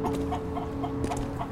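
A chicken clucks in a quick run of short, throaty notes, fairly loud. Nobody speaks over it.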